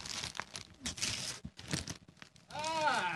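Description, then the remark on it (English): Gift wrapping paper tears and crinkles in loud, irregular bursts as a present, a Nutra Blend bullet blender, is unwrapped, with a short voiced sound rising near the end. “I'm gonna put this down to the wrap paper so everyone can feel really involved.”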